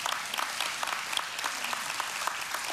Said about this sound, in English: Listen, it's okay to clap for these people. Do you know how much they're getting paid? They're volunteering. So yeah, you should encourage them.